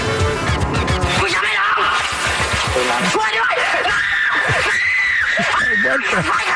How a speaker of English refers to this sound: This is him screaming. Hold on. Start it from the beginning. Start it from the beginning. Wait, that's the actual sound from the video?